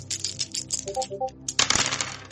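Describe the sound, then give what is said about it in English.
Dice rattle and clatter across a hard table in a quick flurry of clicks, ending in a louder tumbling burst before settling, with no talking. “Oh, dice are liking you today.”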